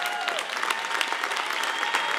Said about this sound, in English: My wife, can you clap your hands? Come on, let's stand to our feet